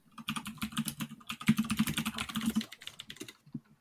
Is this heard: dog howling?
no